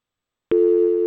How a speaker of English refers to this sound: Do we have a caller on the line with us? Now we're going to hear the dial tone.